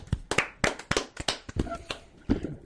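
Brief applause from a small group, a loose scatter of sharp, bright hand claps at an uneven rhythm for a few seconds, moderately loud with no talking over it.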